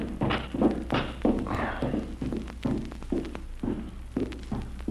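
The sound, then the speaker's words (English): Footsteps climb a flight of stairs toward room 307, taken because the elevator is in use. A dull thud lands in a steady rhythm about twice a second over a low, constant hum, with no voices. “Let's take the stairs.”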